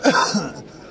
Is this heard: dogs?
no